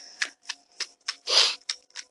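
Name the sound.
tarot cards being shuffled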